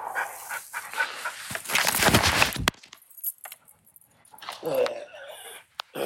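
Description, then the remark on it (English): A two-year-old dog pants heavily and rapidly, the breathy rasps building for a couple of seconds, then after a quieter pause it lets out a few short, sharp barks. “Zeus, chill out. Wow, he's just on one today.”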